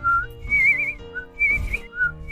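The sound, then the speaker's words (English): A person whistles a bright, birdlike song in short warbling phrases, alternating lower chirps with longer, higher trilled notes, fairly loud with no talking. “But she kept on flitting about, doing her best to sing a happy song.”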